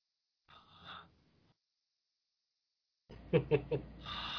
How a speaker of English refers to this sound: Lots of heavy breathing.